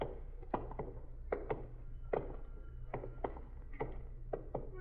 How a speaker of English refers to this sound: What's that? What's what? That knocking. I don't hear any knocking, Sergeant. Stop now. There it is. Sounds like somebody hitting a window.